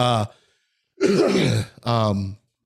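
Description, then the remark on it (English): A person coughs on command: three loud coughs in quick succession, each a harsh, throaty burst with a raspy, voiced edge, separated by brief pauses and with no talking around them. “which ironically enough, I can cough right now pretty much on command.”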